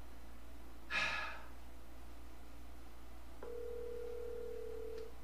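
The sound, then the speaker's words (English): A brief breathy exhale, then a pause, then one steady telephone ringing tone of an outgoing phone call that holds for nearly two seconds, clear, with no one talking. “Ringing, hello?”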